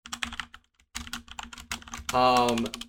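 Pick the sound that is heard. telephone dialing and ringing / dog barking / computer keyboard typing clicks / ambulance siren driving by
computer keyboard typing clicks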